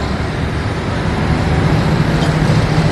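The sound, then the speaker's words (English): The single engine of the ferry boat Lonnie Joe rumbles steadily with a deep, broad roar as it pushes from the bank of the Ohio River, swelling slightly partway through as a low droning hum emerges beneath it. No voices are heard. “And the boat named Lonnie Joe roars to life, pushing from the bank of the Ohio River.”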